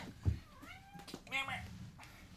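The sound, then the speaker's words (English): A domestic cat hanging off the curtains meows twice in quick succession, first a thin rising cry and then a louder, strained wail, after a dull low thump. “Your cat is hanging off the curtains.”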